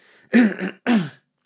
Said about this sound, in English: Pardon me, by the way. I'm going to probably be clearing my throat often. Something got to me.